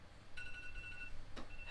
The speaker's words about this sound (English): Oh, what's my fucking alarm doing?